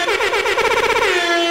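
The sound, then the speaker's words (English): A loud, brassy air horn blares continuously for about a second and a half, its harsh, buzzing tone wavering slightly, with no voices over it. It is a game-show cue on the show Love It or Leave It. “Gonna work on our air horn cues.”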